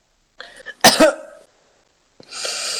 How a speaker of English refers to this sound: Bad time for a cough. Just yeah, I know. Awful time for a cough.